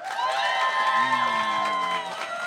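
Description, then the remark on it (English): A loud crowd cheers and whoops with many overlapping high-pitched voices while clapping patters underneath, voting for Kingsley Shacklebolt to win the November nuttiest bracket. The noise holds steady for a couple of seconds before easing slightly at the end. “And which of you thinks that Kingsley Shacklebolt should win the November nuttiest bracket? Clap your hands.”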